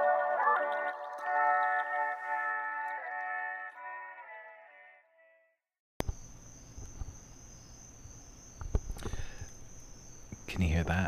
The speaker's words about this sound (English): Sweet sound of the crickets, nature, my backyard.